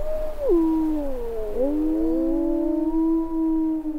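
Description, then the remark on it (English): Several wolves howl together in a chorus in the snows of Yellowstone, long wavering tones sliding down and rising again as their voices overlap and hold steady, clear, with no talking. “Living on Earth's Explorer-in-Residence Mark Seth Lender headed out into the snows of Yellowstone to see and hear the wolves for himself.”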